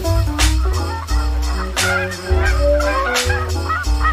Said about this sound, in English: Let us hope that these wonderful birds continue to thrive, and that in the years to come, the prairie skies will resound with these familiar calls of the giant goose.